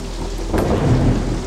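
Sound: thunder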